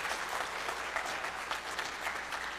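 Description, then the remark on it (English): An audience claps together to give God a hand, sustained applause in a dense, steady wash of many hands with no voices standing out, holding at an even level throughout. “You can clap, you can give God a hand.”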